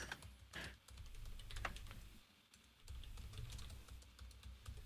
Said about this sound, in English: Somebody say something so I don't have to edit out the silence. I'm typing.